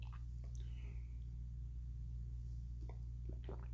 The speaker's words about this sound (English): I had to have a little sip of the old coffee because my throat feels a little scratchy, and that's okay.